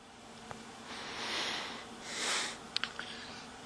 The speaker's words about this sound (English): I think I just have to blow my nose. But I just tried that and I barely get anything out.